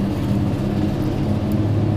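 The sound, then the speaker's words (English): A loud car engine rumbles as the car passes by, a steady low drone with broad road noise that holds at an even level for the whole two seconds, with no voices. “This car is loud.”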